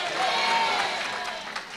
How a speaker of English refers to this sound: We got to start clapping. Can you people say amen? Amen.